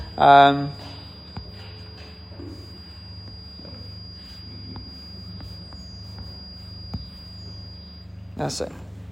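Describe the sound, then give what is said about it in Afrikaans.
A thin, steady high-pitched electronic alarm tone rings without pause for several seconds before cutting off, opening with a brief loud buzzing blast, over a low hum and faint voices. “Ek dink dis jy alarm, want ek het goed toegang, laat ek hom net gou vinnig afsit.”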